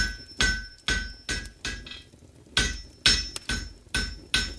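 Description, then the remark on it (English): A blacksmith's hammer strikes metal about ten times in steady succession while forging, each loud blow ringing with a bright metallic tone that lingers briefly before the next. “The song of hammer strokes sang throughout the day and into the night, and when their tune had finally ceased, the entire forge was flooded waist deep with tiny metal spheres.”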